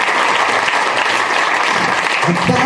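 A loud, steady round of applause from a group, dense clapping that fills the whole clip, with a voice faintly audible beneath it near the end.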